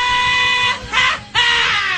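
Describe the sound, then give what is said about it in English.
A loud, shrill scream holds for about two seconds, briefly faltering in the middle before surging back at full strength, raw with no talking. “Sometimes you just feel like screaming, don't you?”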